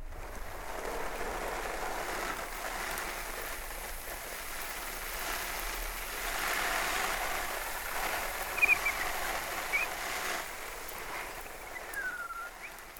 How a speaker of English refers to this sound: So now I'm going to water my tomato plants. Need a bit of watering. Just after being dry for the last few days, they're an outside tomato plant, so I'm going to water them.